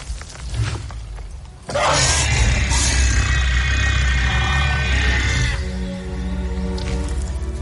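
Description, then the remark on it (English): Trico, the huge creature in the video game The Last Guardian, lets out a loud, sustained roar with a harsh, screeching edge for several seconds, then trails into a lower, rumbling, Godzilla-like growl. No one speaks. “I also like the Godzilla quality of that roar at the end.”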